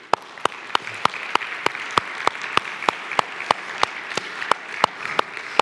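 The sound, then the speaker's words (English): An audience applauds to thank a woman who led a special ministry team, a sustained wash of many hands with sharper claps standing out in a steady, even rhythm over nearly six seconds, moderately loud and without any talking. “And can we just give her a hand?”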